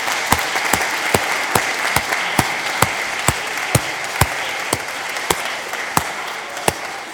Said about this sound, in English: So well done to you all. Let's give them all another round of applause.